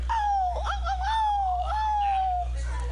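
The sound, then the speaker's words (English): A dog in the room, one of two dogs named Aldo and Coolo, gives a long, drawn-out howling whine that wavers in pitch for a couple of seconds, loud, with a low steady hum underneath. “Do you hear the dogs barking?”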